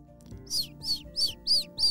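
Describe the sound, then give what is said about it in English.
A small, specially trained messenger bird chirps five times in a quick, steady rhythm as it flies out of an open window, each call bright and high-pitched, with a faint low hum underneath and no voices. “She opened her window and out the bird flew.”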